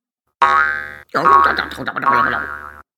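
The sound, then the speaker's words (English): A cartoon boing effect for a rabbit jumping over a little fir tree plays loud and alone, a springy twanging tone lasting about a second, followed by a longer wobbling, bouncing sequence of boing sounds that warbles in pitch before cutting off. “That rabbit jumped right over me.”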